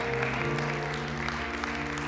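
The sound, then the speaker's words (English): A church audience claps together in a steady, sustained burst of applause as a hand clap of praise, fairly loud, with a held tonal hum of music or organ underneath. “Come on and give him a hand clap of praise.”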